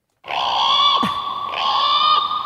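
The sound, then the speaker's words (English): A seagull gives a loud, harsh, nasal cry that holds steady for about two seconds, with a brief break and dip near the middle. No one speaks. “And then we realised that there is a particular bird that you sound like. Have a listen.”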